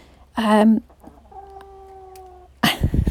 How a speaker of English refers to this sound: Pause for chicken noise.